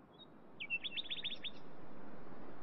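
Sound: nightingales singing at night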